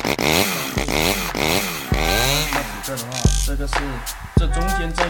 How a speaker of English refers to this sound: Let me get on my new motorcycle. I'm so excited.